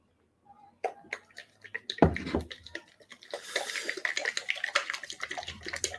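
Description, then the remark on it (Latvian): E-liquid sloshes and rattles inside a small bottle being shaken to mix in the nicotine, starting with a few sharp knocks and building into a steady, rapid splashing rhythm. “Tā, tas ir sakratīts.”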